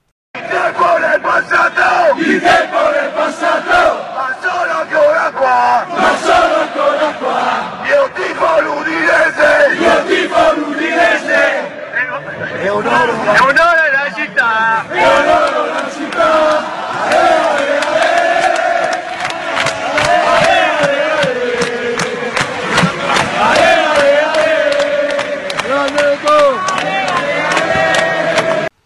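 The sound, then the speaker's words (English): A large crowd of football fans chants in unison, a loud, continuous wall of voices with a rising and falling sung melody that carries on for about half a minute. “It would help if he jumped in with the right lyrics, though, instead of this.”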